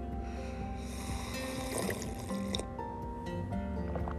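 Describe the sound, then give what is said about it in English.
Coffee pours steadily into a cup, a continuous liquid trickle with a rising fill tone, moderately loud, with no one talking. “Oh, the sound of heaven. Just hook me up right now to an IV because I need coffee today.”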